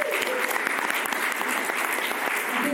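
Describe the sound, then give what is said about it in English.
An audience breaks into loud, sustained applause, many hands clapping in a dense, steady roar that holds at full strength from start to finish. “Big round of applause.”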